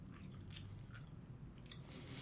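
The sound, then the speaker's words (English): Soft, wet chewing of a raw, small, squishy, doughy biscuit, with a couple of sharper smacking clicks standing out over a low, quiet background; no one speaks. “This is a glass of Chardonnay, just in the form of a small, squishy, scrotum-looking biscuit.”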